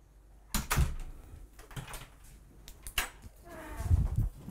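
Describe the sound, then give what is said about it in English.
A heavy self-closing fire-rated door into a garage swings open and thuds shut, with a few sharp latch clicks and rattles between, and no one speaking. “This should be a self-closing fire rated door.”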